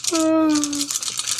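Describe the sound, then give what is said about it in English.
Dice rattle and clatter in a continuous, bright scattering of clicks as a player rolls for a charm check in a game, with a steady hummed or sung vocal tone over the first half. “I'm gonna roll my charm.”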